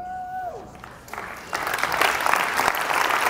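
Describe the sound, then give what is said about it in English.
An audience breaks into applause, starting with scattered claps and swelling into loud, sustained clapping from a large crowd that continues to the end. “Don't clap for me.”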